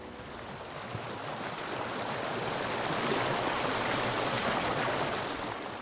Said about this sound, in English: What is that? It's the waterfall.